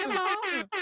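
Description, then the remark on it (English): Two loud, blaring air horn blasts accompany an announcement of an upcoming celebration weekend, the first sustained for over half a second, then a brief gap before a second blast begins. “Where's my air horns?”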